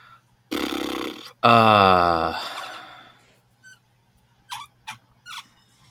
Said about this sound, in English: You got a squeaky mouse. That's what you got. I do have a squeaky mouse.